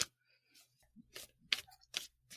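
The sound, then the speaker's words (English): Crisp papery flicks and slides as tarot cards are shuffled, arriving in several short irregular bursts over a faint low hum, with no one talking. “I'm going to shuffle a couple cards and we'll see what comes up.”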